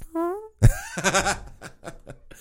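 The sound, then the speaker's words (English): A buzzing mouth-made fart imitation with a wavering low pitch, followed right away by a burst of laughter and giggling voices. “The best fake fart ever.”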